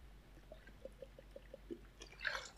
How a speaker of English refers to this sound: Sorry, needed a little bit of water there.